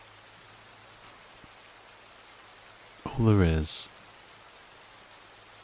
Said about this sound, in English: is the sound of the rain gently coming down.